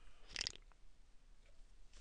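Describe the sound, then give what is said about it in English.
A single short, wet slurp of a local Hudson Valley Brewery dark lager called Manhattan, made into a microphone. It is a soft hissing sip lasting about a quarter second, followed by near silence with no talking. “Sorry, I don't mean to be slurping up all up in your shit.”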